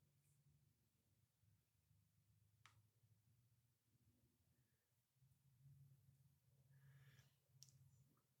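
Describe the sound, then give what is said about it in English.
Coins drop with a few sharp, scattered clinks, one early and a small cluster near the end, heard faintly over a steady low background hum. “Just tell how much change is by the sound of it dropping.”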